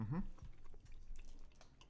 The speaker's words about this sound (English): Yeah, I like it. It's kind of hard to chew. It is.